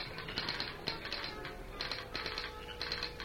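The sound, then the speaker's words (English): A telegraph operator's key clicks out Morse code in an office, heard through an open window, in irregular groups of sharp, rapid metallic taps, short bursts alternating with longer runs, steady in loudness with no voices. “Then, through the open window, she heard the dots and dashes of the Morse code.”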